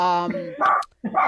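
A dog lets out a brief whiny yelp, then barks twice in quick succession, loud, with a short gap between the barks and no one talking.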